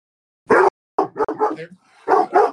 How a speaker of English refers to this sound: Those dogs scared the shit out of me. I'm not gonna lie. That dog was barking like somebody broke in the house.